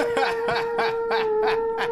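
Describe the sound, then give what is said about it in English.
A video game's whale-sighting alert: a steady electronic tone pulsing in a quick, even rhythm, about six bright swells in two seconds, fairly loud and with no voices over it. “But yes, I believe that's a whale sighting. It is a whale sighting.”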